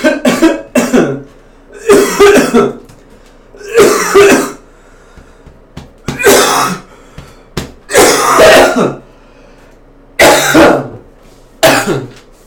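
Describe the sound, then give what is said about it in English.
Loud coughing and throat clearing into a microphone in a series of harsh bursts, about eight of them spread across the stretch with short pauses between. “This is also a good opportunity, once I've coughed into the microphone, sorry about that,”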